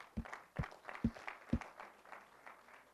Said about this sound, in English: Let's give the Lord a praise clap.